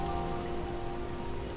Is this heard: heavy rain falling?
yes